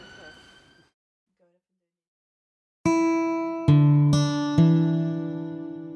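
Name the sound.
ambulance siren passing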